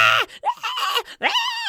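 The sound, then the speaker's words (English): A voice imitates Hastor's shrill screech in three strained, rising bursts with brief gaps between them. It is loud and harsh, almost like a bleating shriek, with no other sound. “I enjoyed Hastor freaking out because he is the screeching.”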